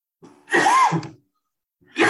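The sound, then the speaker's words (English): A harsh, breathy cough bursts out, followed after a short pause by the start of another, both loud and raspy with no talking around them. “The coughs here, excuse me.”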